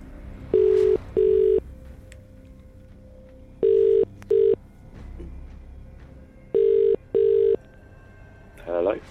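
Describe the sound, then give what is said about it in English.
An outgoing phone call from the Absolute Radio hosts to a randomly selected listener in a cash giveaway rings back three times, each a double burst of steady tone with short pauses between, before the line clicks as if answered at the very end. “Oh, that was three rings.”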